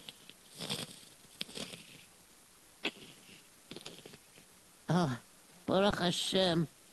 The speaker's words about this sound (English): I think the thunder is stopping. I don't hear the rain so much, it's slowing down.